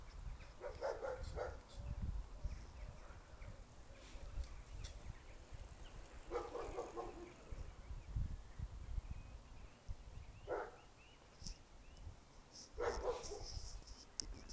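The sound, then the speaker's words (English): A dog barks in a few scattered bursts, some quick doubled yaps, against a soft outdoor background of low rumble and faint rustling, with light rain falling. “Hear a dog shouting.”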